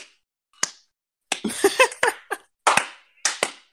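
About ten sharp hand claps in an uneven, loose rhythm: a couple of isolated claps at first, then a quicker flurry, then a few more spaced-out claps, each a crisp, bright smack.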